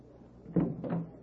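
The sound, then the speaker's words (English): A wooden knock on the door of a flat, then a second, longer rattle as the door is pulled open and answered, both fairly soft and quick in otherwise quiet surroundings, with no one talking. “When there was a knock on the door, I answered.”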